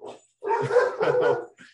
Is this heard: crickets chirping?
no